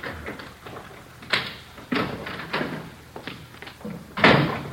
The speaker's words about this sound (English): Somebody's coming around back, Joe. Yeah. Kitchen door.